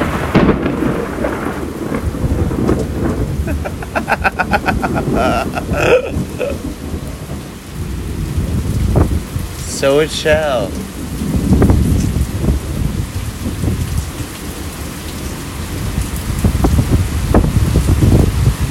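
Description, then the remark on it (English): Steady rain hisses throughout while deep thunder rolls and rumbles in long, heavy waves, the storm loud. A voice speaks briefly near the start. “When the world decides to rain fear and lightning and thunder, so it shall.”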